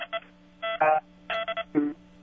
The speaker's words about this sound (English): He's got a bad phone.